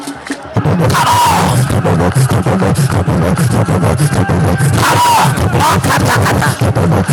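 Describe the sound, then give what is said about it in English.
A church audience claps and prays loudly and steadily for several seconds. A dense mix of shouting voices and crowd hubbub runs underneath the rapid, overlapping claps. “As you are clapping, I release angels.”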